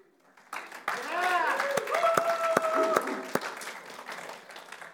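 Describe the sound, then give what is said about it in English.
An audience at a worship service bursts into sustained applause for the worship team after a brief quiet start, with whoops and cheering voices rising over the steady wash of clapping; a few sharp louder claps stand out. “We don't clap for him again.”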